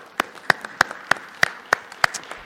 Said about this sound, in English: So we're delighted that you folks have become a part of our life here at Church of the Palms. And let's give them a big round of applause, would you please?